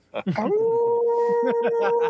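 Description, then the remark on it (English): A long, steady wolf howl sound effect rises and holds for nearly two seconds, loud, while a person talks over it. “We have another lone wolf situation.”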